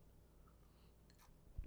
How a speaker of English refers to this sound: Hold on, sip of water.